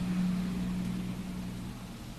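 city traffic noise

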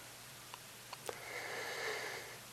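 sniffle

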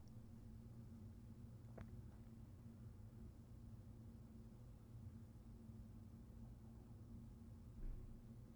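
distant traffic

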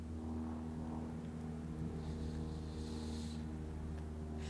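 airplane flying overhead

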